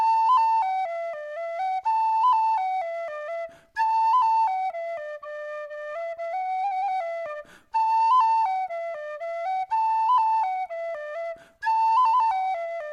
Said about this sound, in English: They were crestfallen, until the boy touched the penny whistle to his lips, and he began to play.